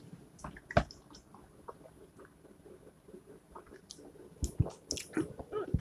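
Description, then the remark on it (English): Someone sips Pabst Blue Ribbon beer from a can: a sharp metallic tap early on, then quiet wet slurps and swallows that grow louder and gulpier toward the end, with no talking. “But anyway, hold on, I gotta take a sip.”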